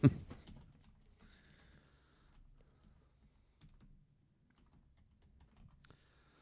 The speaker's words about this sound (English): Yeah, I'm typing fast, you fucking idiot.